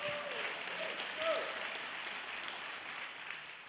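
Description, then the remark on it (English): A crowd applauds steadily throughout, a dense wash of many hands clapping at a fairly even level, with a couple of faint voices or whoops rising briefly in the mix. “Now you can clap if you want, because I need to get a breath.”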